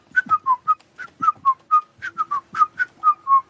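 A person whistles a bouncy, jazzy version of a TV theme tune while driving a car home at sunset, in a quick run of short, clear notes that rise and dip, fairly loud, with a faint low hum underneath.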